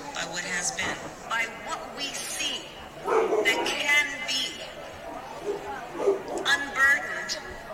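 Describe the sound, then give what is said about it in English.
A dog barks in a few short, sharp bursts, spaced irregularly over a busy background of indistinct voices and chatter, at moderate volume. “Even the dog.”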